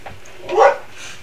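A single short dog bark rings out in the middle of a brief quiet stretch, moderately loud and slightly muffled, with no one talking, while a person is at the door.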